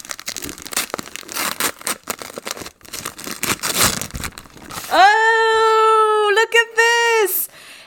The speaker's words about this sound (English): Open the thing that you think is a book. Okay. Oh, boy. Here we go. Can you hear this? It's the paper. Oh, that's good ASMR.